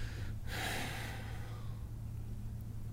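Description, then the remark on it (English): A person imitates a sharp, wheezing gasp for air, a single loud breathy intake trailing into fading rasping breath, over a low steady hum. “Gasping for breath.”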